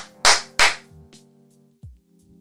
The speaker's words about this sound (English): All right, sorry. Ready? Clap one more time.